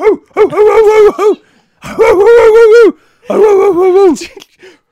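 A dog gives three drawn-out, rising-and-falling whimpering cries with short barking yelps, each loud, separated by brief pauses.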